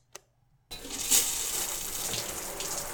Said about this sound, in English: Well, now that my crotch is nice and wet, I hope this button is for the shower.